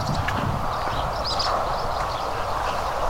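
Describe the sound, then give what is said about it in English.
A steady, unbroken roar of distant traffic on the M56 motorway in the evening, a low rumbling wash that holds an even loudness throughout, with faint high chirps flickering above it and no voices. “Don't know if the microphone's picking up the motorway, M56 in the distance.”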